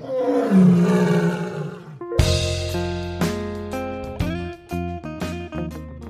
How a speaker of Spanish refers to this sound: Un fuerte rugido de león vino del zoológico.